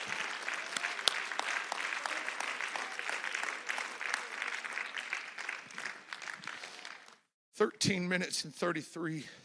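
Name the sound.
audience clapping hands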